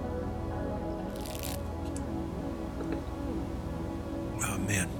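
Two short slurping sips of Dunkin' Donuts coffee from a cup, the first early and the second near the end, over a low, steady background rumble.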